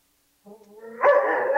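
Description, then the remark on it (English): A dog gives a short whine that rises into a loud, sustained bark, alone with no talking over it. “You got to take your dog out, or what?”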